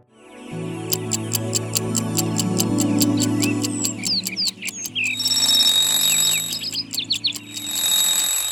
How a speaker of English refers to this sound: Ring, ring, ring. Off goes the alarm clock at 6 in the morning.